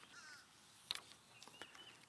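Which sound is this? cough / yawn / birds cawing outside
birds cawing outside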